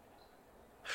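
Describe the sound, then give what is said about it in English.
A person blows a sudden, forceful puff of breath onto someone, breaking a near-silent pause with a loud, breathy rush of air right at the end. “No, don't blow on me.”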